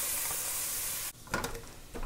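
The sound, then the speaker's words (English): Garlic and organic tofu sizzle in a pan with a steady, bright hiss that cuts off abruptly halfway through, followed by a few clattery stirring and scraping sounds as the frying resumes. “The garlic's cooking in there.”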